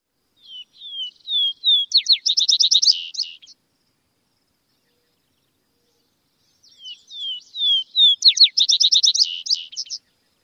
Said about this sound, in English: Those introductory whistles could be confused with the introductory notes of a song sparrow, but remember the Vesper sparrow's introductory notes are downslurred, meaning they go down in pitch.